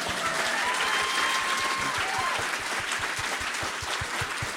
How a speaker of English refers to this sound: yes, please clap.